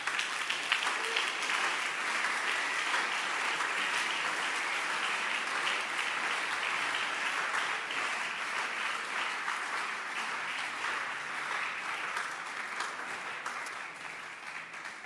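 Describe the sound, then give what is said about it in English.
An audience claps their hands in a steady, dense wash of applause that holds at an even, fairly loud level for about fifteen seconds, tapering slightly at the end. “And you can clap your hands.”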